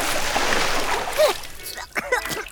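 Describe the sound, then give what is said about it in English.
A big, heavy splash as someone cannonballs into a swimming pool, the churning wash lasting about a second before fading, followed by brief excited shouts and voices. “Cannonball!”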